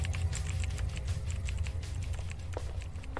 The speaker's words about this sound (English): He's too hard on these things. Like, when he hits the space bar, it's like, bam! Like, he's just slamming it. And he's having a good time. Yeah, he's typing to the rhythm.